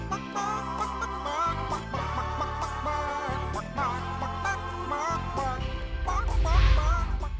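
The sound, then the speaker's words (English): A bouncy pop tune with a steady beat and bass, its melody carried by pitched chicken clucks edited to sing the tune, growing louder and fuller toward the end. “there's a full 3-minute version of it that you can just download and listen to Camilla the Chicken sing …”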